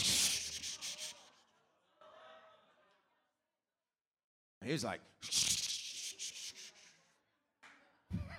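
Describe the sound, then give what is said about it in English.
A voice imitates skin scraping off a wrist with harsh, breathy rasping bursts, one long scrape, then a pause and brief talk, then another loud, gritty scrape with stuttering pulses. “As I was trying to reach over the thing, all of a sudden, all the skin on my wrist.”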